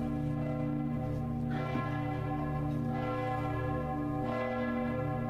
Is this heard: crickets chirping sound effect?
no